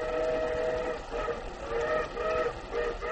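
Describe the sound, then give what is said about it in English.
A train rumbles steadily along the rails while a sustained, multi-toned whistle sounds over it in repeated swells, fairly loud, with no voices. “Tommy Williams sat alone in a railroad coach, his face pressed against the window, thrilling to every new sight.”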